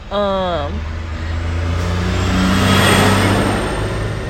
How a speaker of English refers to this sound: Excuse the loud ass truck for ruining my podcast. Anyways, and these cars.